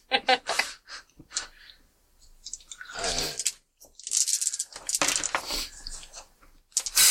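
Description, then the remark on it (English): Dice clatter and tumble across a table in several bursts of sharp clicking and rattling, with short pauses between rolls and brief voices murmuring underneath. “You should really use a dice rolling tray.”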